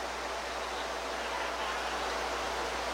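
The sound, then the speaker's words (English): Rain falls in a steady, unbroken hiss, a dense wash of fine patter at an even level throughout, with no voices or other sounds. “That's rain.”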